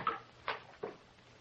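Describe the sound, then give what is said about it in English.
A door swings open after a key is turned and it unlocks, marked by three short, soft clunks spaced about half a second apart, fairly quiet, with no voices. “Swings open.”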